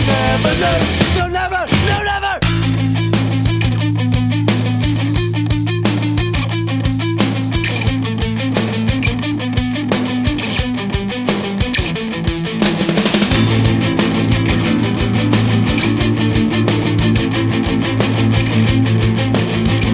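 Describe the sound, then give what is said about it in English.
The bridge of a rock song plays loud and continuous, with a distorted guitar line over a relaxed, steady drum beat; the sound thickens and grows fuller about midway through. “It's same guitar line as before, a little bit more distortion, but chilled out drums.”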